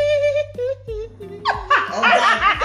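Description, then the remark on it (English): A steady, toy-like tonal sound plays from a singing doll, then a dog breaks into rapid, loud yappy barks that overlap with laughter for the last second or so. “Dog did not like that. He did not like that.”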